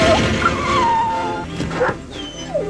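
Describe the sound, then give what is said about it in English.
The dog Buddy from the film Air Bud whines and yips in a few sliding, high-pitched cries over a steady background. The cries are fairly loud, with a short whimper near the end. “here comes your celebrity dog.”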